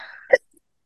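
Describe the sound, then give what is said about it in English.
A voice trails off, then one sharp, loud sneeze bursts out briefly before silence. “Bless you.”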